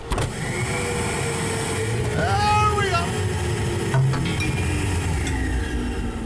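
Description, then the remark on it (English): A pneumatic tube rushes with steady air as a jar-like canister holding a piece of paper sweeps through with a rising and falling whoosh, then lands with a soft thud. A man speaks a short phrase over it. “You know, we just still have to live here in the bunker as I bring up the pneumatic tube.”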